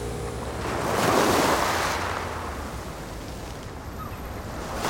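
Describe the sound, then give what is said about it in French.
Ocean waves break and wash onto a shore, a broad hissing surge that swells to a peak and then recedes into a steady roar of surf, with some wind noise. “Et si je vous disais que je suis capable d'amener la mer à Paris ?”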